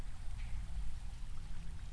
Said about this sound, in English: So I shake my head, and I carry on wading towards the light, and I try not to think about any of it, just for the moment.